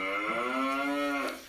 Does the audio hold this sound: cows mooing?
yes